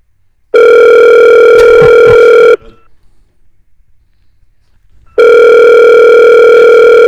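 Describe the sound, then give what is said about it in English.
A telephone call to a man rings out: two long, loud electronic ringback tones separated by a few seconds of near silence, with a few faint clicks during the first ring. “Let's try to get Larry on the phone here real quick.”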